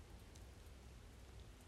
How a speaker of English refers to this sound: I give thanks for the sounds of the rain as it falls from the sky.